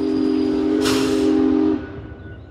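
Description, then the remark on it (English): A trash-hauling train's loud, steady whistle blares for nearly two seconds over rumbling rail noise, with a burst of hissing steam midway, then cuts off as the rumble fades. “Other places use trains, which can carry over 200 boxcars worth of trash. All aboard the Garbage Express.”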